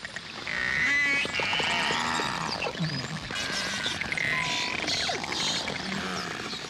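A dense chorus of beluga whale whistles and chirps, with rising and falling squeals, buzzy clicks and chatter overlapping continuously, steady and fairly loud, with no voices.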